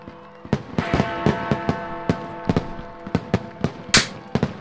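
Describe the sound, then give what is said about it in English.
New Year fireworks go off in a rapid, irregular string of sharp bangs, about a dozen, with one louder burst trailing a hissing crackle near the end, all over a steady low hum. “I hope that isn't too loud on the audio with those fireworks and the...”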